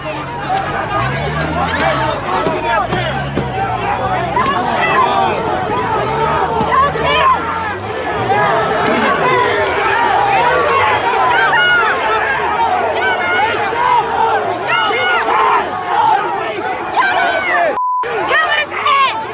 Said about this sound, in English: So first, here's a truck driver being pulled out of his truck and beaten by a mob of many dozens of people. Watch.